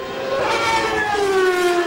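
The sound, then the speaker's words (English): A Formula One racing car engine screams with a loud, continuous high-pitched whine, its layered tones sliding slightly lower in pitch over about two seconds, with no one speaking. “It takes a staggering £50 million to coax these dulcet tones from a Formula One racing car”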